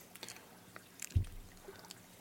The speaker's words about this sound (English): Roll up your sleeves, pour yourself another drink, because this is Off the Cuff. Cheers, everyone.